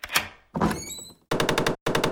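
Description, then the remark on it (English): A woodpecker pecks furiously at the wooden door of a cake shop: a couple of sharp knocks, then two rapid, rattling bursts of fast, even taps, loud and with no voices. “It was the woodpecker who had been pecking furiously at the door.”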